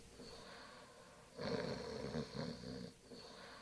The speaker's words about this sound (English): He was laying there on the bed. Pretty good-looking fella, in kind of a fat way. He was laying there snoring, his hand hanging over the bed, and I never thought.